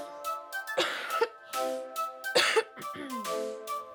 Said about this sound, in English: Speaking of Bart, I need to have a COVID cough. So let's take our COVID cough break.